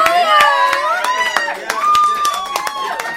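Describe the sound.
A small group claps in sharp, irregular bursts while high-pitched voices whoop and cheer over it, a short, lively round of applause lasting a few seconds.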